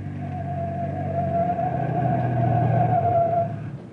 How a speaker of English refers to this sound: turn the car around and chase him.